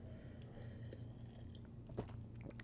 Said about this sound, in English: But cheers. Well, let's take a little sip.